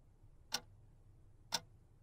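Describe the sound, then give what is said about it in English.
A wall clock ticks twice, exactly one second apart, each tick a crisp, sharp click over a faint low hum. “You've got scenes of a vacant gym, a ticking clock on the wall, dripping water from a faucet.”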